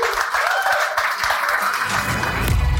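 A round of applause from a crowd, dense steady clapping with scattered cheering, loud and continuous throughout, swelling slightly toward the end.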